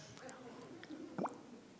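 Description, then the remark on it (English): A short liquid gulp or plop with a quick rising pitch, like water being poured or swallowed, as a speaker drinks water during a talk, set against quiet room murmur with a few faint small clicks. “I need some water, actually. I'm really dry.”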